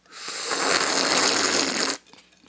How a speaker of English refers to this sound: I'll try and not to slurp here.